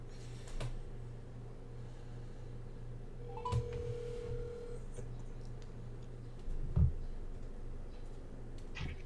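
A phone call being placed: a few soft clicks, then a single steady ringing tone lasting over a second, all fairly quiet over a constant low electrical hum with no one speaking.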